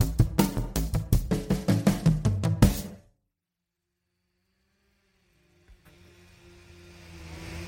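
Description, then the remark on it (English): A motor saw snarls in quick, rhythmic pulses for about three seconds, loud and buzzy, as wildland firefighters saw along a road to clear smaller vegetation hanging into it; then it cuts out to silence before a low, steady engine hum rises at the end. “We are sawing along the road to clear off the smaller vegetation that are hanging in the road and could send sparks onto the other side.”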